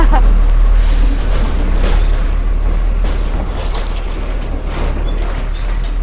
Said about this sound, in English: There's a Coca-Cola truck behind me.